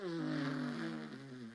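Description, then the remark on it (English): A single drawn-out, buzzy fart sound, fairly loud, holding a steady reedy tone that sags slightly in pitch toward the end. “Those are farts.”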